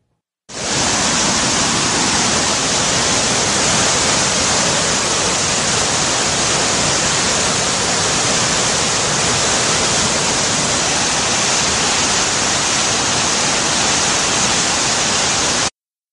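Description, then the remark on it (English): A loud, steady rush of fast-flowing river water fed by melting mountain snow, flowing downstream towards the Dead Sea, roars continuously for about fifteen seconds, unbroken, with no voices over it. “So when the Israelites arrived at the river, this was the river that they saw. We have a video right here.”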